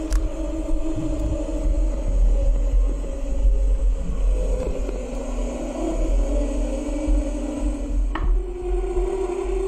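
Wind drives the Singing Ringing Tree sculpture in the north of England on a windy day, its tuned pipes sounding steady, overlapping low humming drones that swell slightly over a heavy, continuous rumble of wind buffeting. No one speaks.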